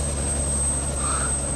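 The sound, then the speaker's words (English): A helicopter drones steadily and fairly loud, its low engine rumble and rotor thrum continuous throughout with a faint high whine on top, and no voices. “That's not a plane. Tomato, tomato, what is? It's a helicopter”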